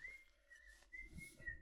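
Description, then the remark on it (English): Someone whistles a short, bright melody that stays at a fairly steady high pitch with slight dips, heard softly over a low background rumble. “Whistling a jaunty tune?”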